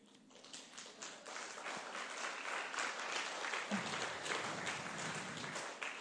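The audience of Fellowship Paragould church breaks into applause, many hands clapping in a dense, steady patter that builds quickly and holds at a fairly loud level for several seconds.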